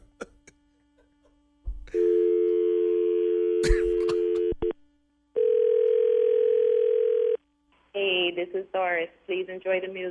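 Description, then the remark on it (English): A steady telephone tone drones for a couple of seconds after a caller hangs up, cuts off, then returns for another two seconds before voices begin speaking over the end. “Boy, he didn't cuss us out, but he keep hanging up.”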